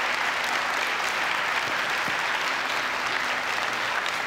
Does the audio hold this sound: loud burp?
no